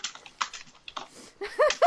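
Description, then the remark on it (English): Quick, irregular clicks of typing on a computer keyboard as someone tweets a quote, moderately loud, followed near the end by a brief burst of voice sounds. “Oh, oh no, where are you typing?”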